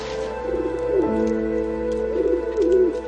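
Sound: birds calling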